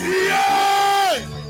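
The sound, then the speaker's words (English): An audience cheers loudly in a standing ovation to welcome an evangelist with shouts and claps, led by one sustained, ringing shout that holds steady for about a second and then slides down in pitch before cutting off, over a dense roar of crowd noise. “I want you to, with a shout and a clap of him, welcome the man of God, the evangelist.”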